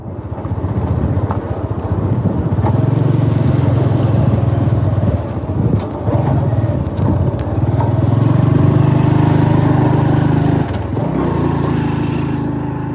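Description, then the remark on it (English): A small moped engine drones steadily while riding along a mountain route into Sapa town, its pitch rising and dipping slightly, with wind rushing and buffeting the microphone throughout. No one speaks. “A small sign which said "Welcome to Sapa Town" greeted me and my moped as we entered the city on the side mountain route, which was linked to Okwiho.”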